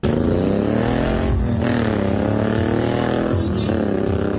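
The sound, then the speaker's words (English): Loud, continuous roar of heavy truck engines revving in a Trump train convoy outside Mar-a-Lago, with rising and falling pitch sweeps as vehicles accelerate, layered into a dense, steady rumble with no pauses. “Outside of Mar-a-Lago, they had the Trump train show up, and they're so fucking classy.”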